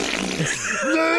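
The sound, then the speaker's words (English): A person blows a loud, wet raspberry with the mouth, imitating a fart: a buzzy, sputtering burst lasting about a second, forceful, with no other sounds around it. “I like to do the thing, if someone's on the phone in the bathroom, is I make incredibly loud farting sounds with my mouth.”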